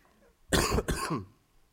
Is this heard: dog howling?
no